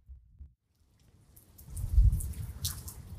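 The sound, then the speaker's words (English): Low thunder from a storm rumbles across the sky out of near silence, swelling to a deep peak and then rolling on, while a soft patter of gentle rain hisses and ticks over it, heard from a front porch as the air cools. “I'm just kind of out here on the front porch listening to the thunder rumble across the sky. Gentle rain is falling.”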